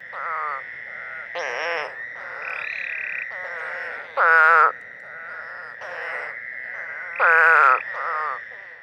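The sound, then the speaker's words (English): A North American toad with cat-like vertical pupils gives a strange, bleating call that repeats in a steady series of nasal, wavering notes, with two sharper, louder bursts standing out, alone without any talking. “Their eyes are more like the eye of a cat with a vertical pupil rather than the horizontal pupil you will see on all the other frogs and toad species.”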